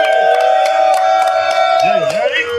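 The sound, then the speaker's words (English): A crowd cheers loudly and steadily for a rapper, who is in the building, with a sustained high whooping tone held over the roar, scattered claps popping through, and a wavering voice rising near the end. “Now we have a once again, if y'all don't know, we got … in the building. Make some noise.”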